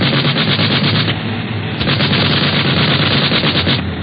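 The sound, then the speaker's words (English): Continuous rapid machine gun fire from an airplane nosing down at another plane ahead, aiming for its right wing or pilot: a loud, dense rattle of shots sustained for several seconds over a steady engine drone, with no talking. “Now we'll see how they like a dose of their own medicine.”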